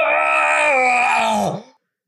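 A single loud, drawn-out pained groan, strained and yell-like, holding steady before its pitch sags and it cuts off into silence.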